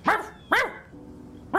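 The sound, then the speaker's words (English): Three sharp, loud dog-like barks voicing kobolds that pop out of snow banks and trees in a forest east of a riverbank and bark at Nimrod, spaced unevenly, two close together and a third after a short pause, with no talking around them. “Eventually, he leads you kind of into the forest on the east side of the riverbank area, and you hear a ow, ow, ow, ow, ow, coming from in front as a few kobolds kind of like pop out of snow banks and trees and start barking at Nimrod.”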